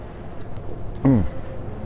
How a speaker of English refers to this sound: In fact, I'm gonna take a sip right now.